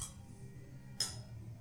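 A single bright clink of beer glasses touching in a toast, sharp and brief, rising out of a low, steady background hum with no one talking.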